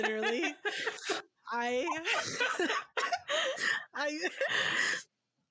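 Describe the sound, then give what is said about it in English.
A loud bout of repeated harsh coughing after drinking water went down the wrong pipe, broken by strained, voiced gasps for breath, in several bursts over a few seconds before stopping abruptly. “had this huge coughing fit”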